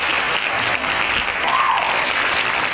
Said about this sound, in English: Salute to him. Salute. Hand claps on that. Hand claps.